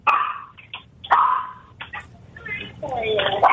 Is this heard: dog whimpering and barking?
yes